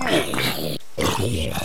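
A zombie growls twice in a video game, two loud, guttural groans split by a brief pause, with no other sounds around them.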